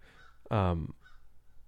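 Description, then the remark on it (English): A single loud, harsh honk from a bird outside the window cuts in sharply for under half a second, then fades back into a quiet background with faint murmuring. “Are you as annoyed by these birds outside as I am?”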